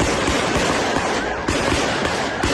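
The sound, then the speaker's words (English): Rapid gunfire crackles in a dense, continuous burst of sharp overlapping shots, loud and harsh, with no voices heard over the noise, during a mass shooting at a biker bar in Southern California on a Wednesday night. “A hail of gunfire Wednesday night at Cook's Corner Bar, leaving 4 dead, including the gunman.”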